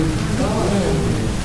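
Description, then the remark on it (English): Heavy rain pours down in Locust Grove in a steady, dense hiss that stays loud and unbroken throughout, with trees and bushes bending in the storm and a faint voice murmuring somewhere beneath the downpour. “See, some of y'all didn't see that rain was coming down so hard out there.”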